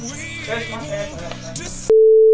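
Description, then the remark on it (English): Busy music cuts off abruptly and gives way to a loud, steady, single-pitched electronic tone, an interference beep on Argentocast Radio that holds unbroken to the end. “Argentocast Radio is experiencing interference at this moment. Please wait.”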